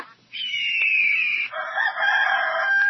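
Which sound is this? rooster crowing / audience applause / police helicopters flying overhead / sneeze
rooster crowing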